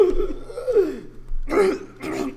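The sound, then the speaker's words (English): A voice acts out a sharp gasp followed by two harsh, throaty coughs, with no talking. “But she gasps.”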